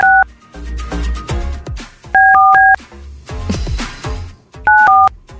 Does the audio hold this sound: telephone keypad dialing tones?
yes